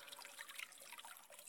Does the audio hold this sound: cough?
no